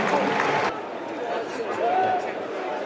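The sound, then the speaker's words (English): A football stadium crowd applauds the 69th-minute substitution of Duncan Watmore for Thogi, a dense burst of clapping that gives way to a steady crowd roar and murmur, with indistinct voices mixed through it. “He gets applause. Gets applause.”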